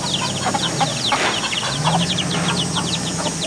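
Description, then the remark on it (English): A flock of chickens clucks and chatters continuously on an organic chicken farm, many short overlapping calls, with a steady low hum of farm background underneath and no one speaking. “Angel was a farm worker for nearly a decade when he met Caitlin, whom he began working with to start an organic chicken farm.”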